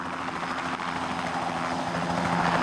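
Steady helicopter noise with the rhythmic thudding chop of spinning rotor blades over a constant engine drone, loud and continuous with no one speaking.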